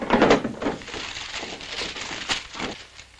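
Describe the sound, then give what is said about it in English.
A desk drawer slides open with a wooden thunk, followed by busy rummaging and clattering of objects being shuffled around inside for a few seconds as someone searches it for a letter. “The letter. Right here in my drawer.”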